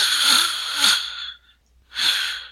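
Raspy snoring: a long rattling breath with a low buzzy drone, a brief silent pause, then a shorter noisy breath starting again. No one speaks.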